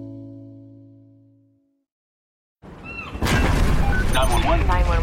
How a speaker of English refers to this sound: I'm on a cruise ship. There was an explosion. Oh, my God. The ship is sinking.